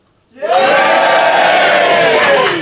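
A live audience bursts into loud, sustained cheering and shouting after a brief quiet moment, many voices roaring together at full volume until the end, cheering in answer to whether someone should stand for leader of the Conservative Party.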